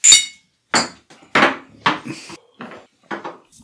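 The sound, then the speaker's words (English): Shot glasses of Canadian whiskey clink together in a toast, followed by a string of sharp knocks and taps on a hard surface, fairly loud, with a brief bright ring on the first hit. “We're going to talk shit. Cheers. Tink.”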